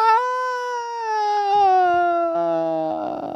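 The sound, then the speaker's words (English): A single loud, sustained shriek holds a bright, piercing tone for over three seconds, sliding slowly downward in pitch before breaking into a raspy, rough finish. No one speaks. “Was that a shriek?”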